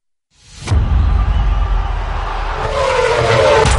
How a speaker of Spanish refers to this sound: La adrenalina de un auto a 300 kilómetros por hora.